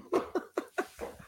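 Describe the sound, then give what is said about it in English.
Five quick, sharp barks from Greg Berhalter's puppy in a steady rhythm, fairly loud, with the last one trailing off into a softer, lower yelp. “That dog hates Miazga.”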